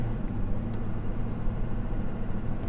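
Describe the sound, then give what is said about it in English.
A truck engine, with a dump trailer, rumbles steadily while backing in at a dump, a deep, even low-pitched drone holding constant for a few seconds with no voices. “So we got a trash truck about to pull out. I'm backing in here.”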